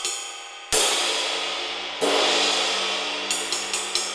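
A bright, washy cymbal crash with broad shimmering noise and little distinct bell tone, struck twice with long decays, followed by four quicker, lighter hits near the end.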